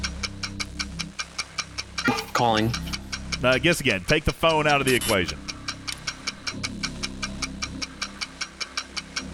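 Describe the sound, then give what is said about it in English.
A steady, loud game show countdown clock ticks at a quick, even pace throughout, timing 30 seconds, and continues underneath a brief burst of people talking in the middle. “30 seconds on the clock.”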